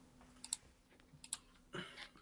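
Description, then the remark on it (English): Soft, scattered keyboard typing: a few isolated key clicks, then a short burst of quick taps near the end, faint against a quiet background hum. “Secret typings. Secret typing man.”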